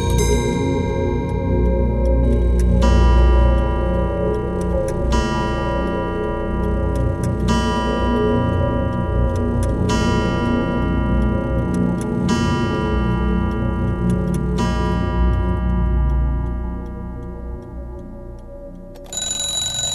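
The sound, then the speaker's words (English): Many antique clocks tick together in a clock shop in Dublin that restores pre-20th-century clocks, a dense, overlapping clatter while bright chimes strike at steady intervals of a few seconds, ringing out and fading. Nobody speaks. “We're in a shop called Timepiece Antiques. It's the only clock shop in Dublin City.”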